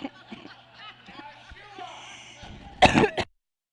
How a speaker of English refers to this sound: Can't make me laugh, I'm going to cough. Allergies, we're working on it. I'm not sick, I promise.